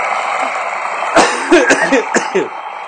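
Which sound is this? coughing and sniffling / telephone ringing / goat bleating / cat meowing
coughing and sniffling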